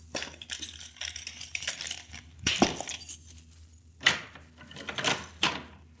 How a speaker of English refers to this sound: Yeah, this door is locked. I have keys that may unlock it. As locked as I thought.